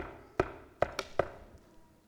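Knocking on a door: a single sharp rap, a brief pause, then three quicker knocks, fairly crisp, with no voices and only quiet room tone between them.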